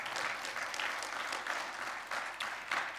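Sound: audience applauding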